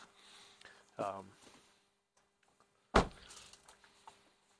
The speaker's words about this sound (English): Sorry, shutting doors.